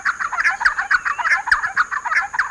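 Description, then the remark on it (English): Giant wrens, nearly 9-inch wrens with rusty brown backs and white undersides, call raucously in a dense, continuous stream of harsh, clucking chatter, several birds seemingly calling at once as they chase one another through open woodland; loud, with no voices. “Far from shy, they call raucously as they chase one another through open woodlands.”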